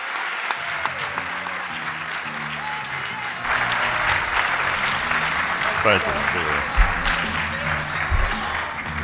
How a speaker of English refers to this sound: But if you would, please give a big round of applause and help me welcome to the stage Dr. Bernard Harris.